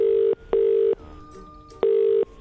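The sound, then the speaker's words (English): Telephone ringback tone of an outgoing prank call to a man who is pouring cement: a steady, fairly loud electronic burr in a double pulse, a pause, then another pulse. No one speaks. “And he gets a phone call from this idiot.”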